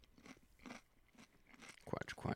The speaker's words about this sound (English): Crunch.